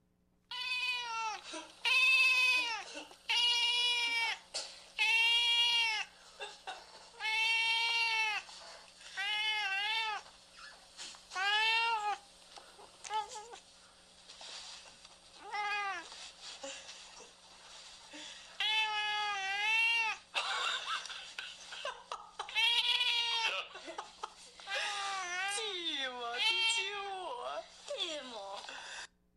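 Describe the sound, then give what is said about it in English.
A cat caterwauls loudly for the whole 30-second stretch, its long, wavering yowls rising and falling in pitch, repeated in rapid bursts with brief pauses between. “That's a 30-second clip of a caterwauling cat.”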